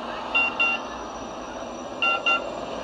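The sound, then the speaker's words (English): A Phoenix Metro Light Rail train rumbles steadily while two pairs of short electronic beeps chime out, one pair early on and another near the end. “In Phoenix, its focus is the Metro Light Rail and surrounding neighborhoods.”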